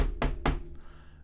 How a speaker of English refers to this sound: Knock on wood.